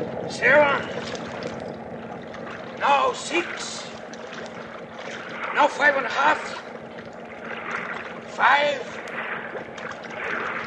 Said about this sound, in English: Now get your line out and let's get those engines revved up.